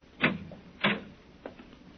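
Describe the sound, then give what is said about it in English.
A door in a cellar being opened: two sharp mechanical clunks of a latch or handle about half a second apart, then a softer knock, with no talking. “Another door.”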